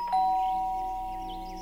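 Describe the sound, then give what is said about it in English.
A house doorbell chime rings once, its two bright tones sounding close together and then slowly fading as they sustain. There is no talking, just a faint background hum. “No, I stayed and rang the doorbell.”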